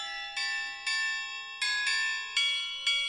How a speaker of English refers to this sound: Yes, I have indeed changed my ring doorbell chime to a festive one.